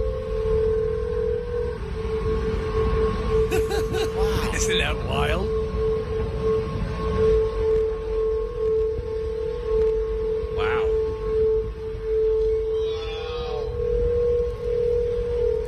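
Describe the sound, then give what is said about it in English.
Golden Gate Bridge railings singing in the wind, heard while walking across the bridge: a loud, steady, eerie tonal drone with layered pitches that holds unbroken over a low wind rumble, while a person briefly talks. “So here is a clip of what it sounds like now when you're walking across the Golden Gate Bridge.”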